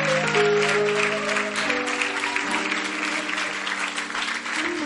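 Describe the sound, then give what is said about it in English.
A church audience claps steadily and loudly throughout for people returning to their seats, a dense wash of many hands, while sustained organ or keyboard chords play underneath the applause. “Clap for them as they go back.”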